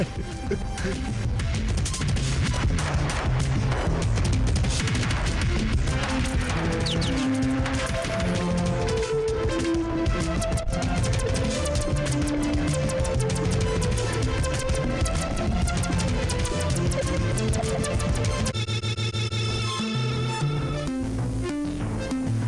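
A busy, buzzy electronic tune from the 1990s, composed on a Motorola phone, with rapid runs of thin synthetic notes at a steady volume. The texture shifts briefly near the end, and no one speaks.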